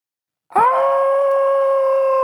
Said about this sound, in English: The scream pitched through the mansion like that of a screeching owl. Neville had just put the finishing touches to his bow tie, and his hands startled at the horrific sound from below.